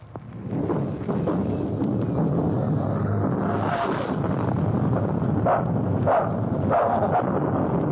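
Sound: small dog barking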